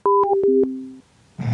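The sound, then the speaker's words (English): A phone line goes dead after a caller hangs up, with a couple of clicks and steady electronic tones lasting about a second, followed by a brief silence and then a burst of rough noise. “I don't know if it's a technical problem, or if they're just all hanging up.”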